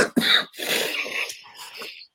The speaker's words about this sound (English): dueling coughs.